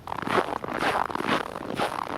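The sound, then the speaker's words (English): Steady footsteps squeak and crunch over fresh, cold, packed snow at an air temperature of about 5 below zero: about four or five bright, scraping crunches in an even walking rhythm, fairly loud, with no talking. “That's me walking over the fresh snow with an air temperature of about 5 below today. And you hear how it squeaks and crunches.”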